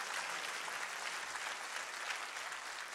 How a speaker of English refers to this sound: Can I have my little keyboard player? And she's good. Give her a clap as she runs up there. You better go fast because they're watching you.